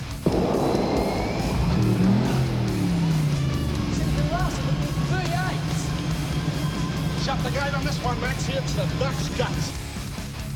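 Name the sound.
race car engine roaring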